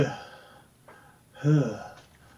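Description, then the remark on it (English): Two short, forceful breaths puffed out by a person breathing as instructed, each a quick voiced huff with a pause between them, shallow and rhythmic like panting exercise breaths. “Okay, keep breathing. More breathing. It's very shallow.”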